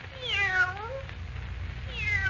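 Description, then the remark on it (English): A fawn-colored Siamese cat meows twice, a long drawn-out, falling yowl followed after a pause by a shorter rising cry, over a low background hum. “Eagerly, Perry White hurries across the room to where Clark Kent stands holding the fawn-colored Siamese cat, his eyes blazing with excitement.”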